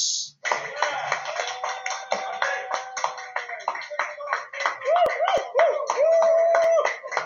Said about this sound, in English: Ladies and gentlemen, let's give her a beautiful round of applause.